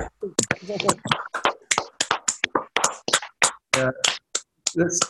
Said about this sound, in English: So let's give them all a big round of applause, guys. Unmute, and we're gonna do a big round of applause. Okay, ready? One, two, three.